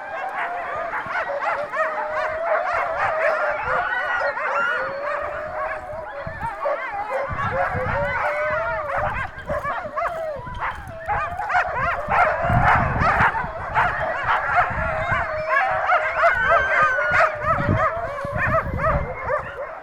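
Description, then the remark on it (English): Hundreds of huge white wolfy dogs, some in kennels and others on long chains in open fields, howl and bark almost nonstop, overlapping voices rising and wavering in a dense chorus with sharp barks and yips scattered throughout. “They howl almost constantly.”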